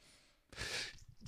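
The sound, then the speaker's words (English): A soft breathy inhale gives way to one sharp sneeze, followed a moment later by a short burst of breath. No one speaks. “Bless you.”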